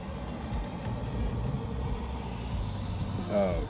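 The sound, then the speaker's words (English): A car rumbles past, a steady low engine and road noise filling the whole stretch, with a brief voice sound near the end. “Yeah, sorry, I got distracted. No, man, you're good. Cars, man.”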